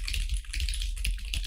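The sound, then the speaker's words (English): Rapid, clattering keystrokes on a computer keyboard in a house with thin walls, dense and loud, with a steady low rumble underneath and no voices. “Dude, the walls are so fucking when I'm typing, thin. Like really like loud, right? So this is how I type, right?”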